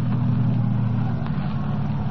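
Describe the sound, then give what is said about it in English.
A car engine hums steadily, a low, even rumble with no rise or fall, as the vehicle rolls slowly through the gate of Carnival Town, an amusement park, to park alongside another car. No voices are heard. “Drive right through the gate. You can park alongside that car.”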